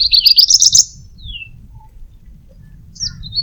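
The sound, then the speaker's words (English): A grey-breasted prinia sings a quick burst of rapid, high, buzzy notes, then a thin descending whistle and a few more short chirps, heard clearly over a low outdoor rumble. “The grey-breasted prinia can be seen and heard boldly calling out.”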